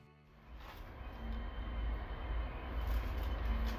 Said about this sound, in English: I'm riding the same train I took to see Eilee.